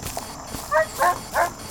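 Three short, sharp dog barks in quick succession, evenly spaced and moderately loud, standing out over a faint background with no talking.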